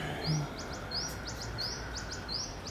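birds chirping outdoors

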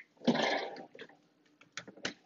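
drinking bottled water

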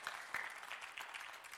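audience clapping

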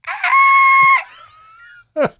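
goats screaming

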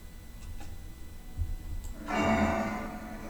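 clock ticking

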